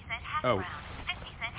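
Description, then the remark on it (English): A phone alert tone sounds in a few short, bright electronic chirps, one sliding up and down in pitch, moderately loud with no talking over it. “Is that your phone? Yeah, I have an alert for when something big happens in the world of hash browns.”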